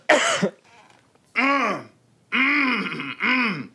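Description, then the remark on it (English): A person chokes and sputters, four harsh bursts of strained coughing and gagging with rising-and-falling voiced pitch and short gaps between, fairly loud. “he is choking.”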